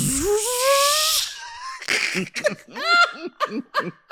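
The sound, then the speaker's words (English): A voice imitates the garage door of a big house churning open: a strained, rising, breathy drone with hissy noise for about a second, then choppy bursts of laughter. “But when I heard them niggas churn on that motherfucking garage, that bitch went.”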